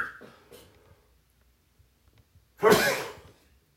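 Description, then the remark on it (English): A single loud sneeze bursts out after a few seconds of faint breathing and near silence, with a sharp explosive onset that trails off quickly. “Pardon me, I have a sneeze coming.”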